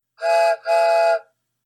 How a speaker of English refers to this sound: It just seems so romantic and old-fashioned, and I wish we could play our little choo-choo music right now, too.